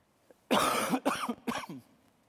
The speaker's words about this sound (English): Whenever I cough like that, I mean to turn this thing off.